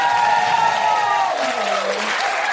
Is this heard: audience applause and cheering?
yes